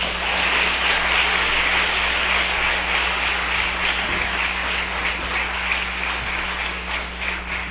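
Steady, dense applause from an audience, many hands clapping at once in a continuous wash of sound that holds at an even level throughout, with a faint low hum underneath.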